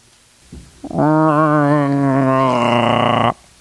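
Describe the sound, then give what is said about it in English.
A deer, mouth open, lets out a single loud, sustained bellowing roar with a deep, wavering tone, lasting a couple of seconds and ending abruptly, preceded by a brief short grunt. “Its mouth opened, and the deer roared.”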